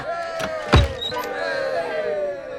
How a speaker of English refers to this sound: He unlocks the doors and throws them wide open.